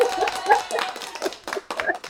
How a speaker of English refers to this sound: I would turn on my applause. I don't think I have. Let's see. Oh.